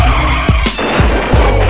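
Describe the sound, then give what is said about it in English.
The tires of a moving Dodge Ram 1500 pickup truck skid loudly over a steady engine roar, the screech rising and falling in several quick swooping squeals that fill the whole clip without any voices. “You're not following the Million Dollar DJ on Twitter, then please stand in front of a moving Dodge Ram 1500.”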